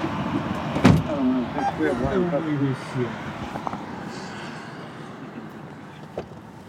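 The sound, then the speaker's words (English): Inside a car, a sharp door thump is followed by shuffling movement as a person gets into the back seat and settles in, with muffled voices briefly talking under a steady low vehicle hum. “No, he's getting in the car.”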